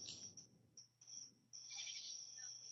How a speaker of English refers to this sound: Dude, it's not good. We hear like crickets and junk. Well, I'm in nature right now.